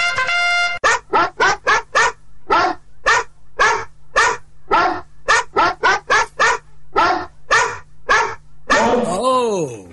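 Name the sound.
dog howling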